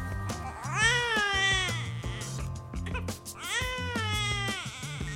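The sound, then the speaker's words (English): Two long, wavering yowls from alley cats, each rising and then sliding down, fairly loud over a steady low, pulsing background with no talking. “In between the alley cats and the cat calls, we sound an awful lot the same, you and I.”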